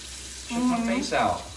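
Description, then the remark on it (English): Hot water runs steadily from a tap in a continuous hiss while someone shaves with a razor, and a voice briefly vocalizes over the flow partway through. “Somebody said, turn off the water.”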